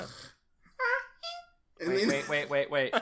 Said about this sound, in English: As a slow article, a small child honked whenever he breathed after actually swallowed.